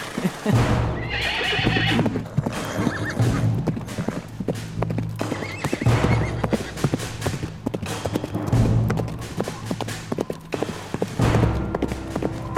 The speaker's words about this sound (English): All right, so you continue north, moving your steeds along at a quick pace to try and make it to Ulaven by nightfall.